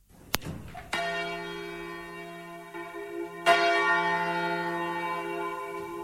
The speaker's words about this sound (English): The unmistakable sound of the tenor bell of St. Mary's Cathedral here in the heart of Limerick City.